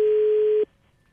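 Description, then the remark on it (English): A telephone ringback tone on an outgoing prank call: one steady, electronic hum-like ring over the line that cuts off abruptly, leaving faint line hiss. No one speaks. “We're prank phone calling you right now.”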